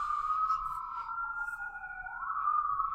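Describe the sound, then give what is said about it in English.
A siren wails steadily, its pitch sliding down slightly then rising again, with a faint low rumble of traffic underneath and no talking. “Do you want to wait while whatever is going on with the sirens and stuff?”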